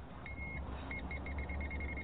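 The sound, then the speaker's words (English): A voltage tester beeps on a broken, unprotected live power line lying on the ground, carrying 120 volts: one longer high-pitched tone, then a quick run of short, steady beeps over a low background hum. “When that beeps, Bill, that means there's electricity flowing through.”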